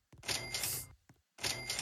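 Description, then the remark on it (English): A bright video game cash register cha-ching sound effect chimes twice with a short gap between, crisp metallic ringing and a rattling drawer, loud with no voices. “There's just like fucking cash register sound effect like every 2 seconds and it's annoying.”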